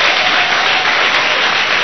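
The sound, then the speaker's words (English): An audience applauds the speaker's leaders, who are seated there, steadily, dense overlapping claps filling the space at a loud, even level from start to finish with no voices standing out. “If you want to clap, clap.”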